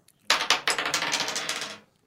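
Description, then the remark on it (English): Dice clatter and tumble across a hard surface, a quick burst of bright rattling clicks that bounce several times before settling after about a second and a half, fairly loud. “The dice again.”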